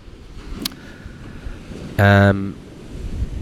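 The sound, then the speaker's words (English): Strong, steady wind roars across the microphone over a constant wash of ocean surf on an empty, extremely hot beach in Nicaragua, broken midway by a brief, loud tonal burst before the windy rush carries on. “there's no one on the beach because it's literally, it's frying right now. And there's a big, big wind”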